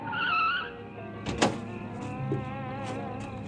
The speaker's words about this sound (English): I found an empty freight car and hid in it. I just clambered in when I heard a car drive up.